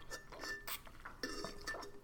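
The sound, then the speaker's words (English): Someone drinks water from a glass: a few light clinks with brief high ringing tones, mixed with soft handling and sipping noises, with no one talking. “And hold on, water break.”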